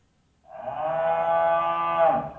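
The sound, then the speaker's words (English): A single long, deep bull's moo, played as a sound effect, rises after a brief silence. It holds steady and loud for nearly two seconds with a rich, buzzing harmonic tone before tapering off. “So let's move into our bull.”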